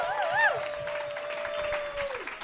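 Steady audience applause fills a couple of seconds, with a warbling whistle-like tone rising over the clapping, holding a flat pitch, then sliding down as it ends.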